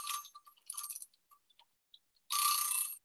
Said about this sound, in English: That's going to tick for a while. It's an old-fashioned kitchen timer.